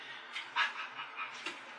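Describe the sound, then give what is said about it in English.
A voice imitates a dog with a few soft, breathy bark-like huffs in quick succession, fairly quiet, with a slightly panting quality and no other talk around it. “Bark.”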